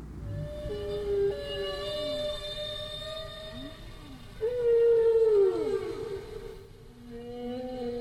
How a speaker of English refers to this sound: They also do strange things like doing ABA form, where they make a statement. Now that's one phrase, and the whale repeats its phrase and sort of yodels the second time. Here, I'll show you what I mean.